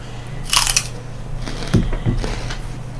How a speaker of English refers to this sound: Looks good. Like a fine piece of celery. It's just crunchy water is all celery is. Pretty much, it's like 95% water.